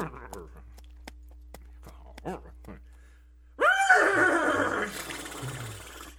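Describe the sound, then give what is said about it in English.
Someone gives a loud, wavering imitation of a horse's whinny that lasts a couple of seconds, after some soft breathy vocal sounds. “If only I could speak horse.”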